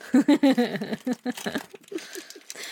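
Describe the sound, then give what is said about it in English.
Packing tape and cardboard rip and crinkle as a heavily taped package is torn open, a voice groaning with effort at first, then a string of quieter scratchy tugs and rustles. “Did you use enough goddamn tape?”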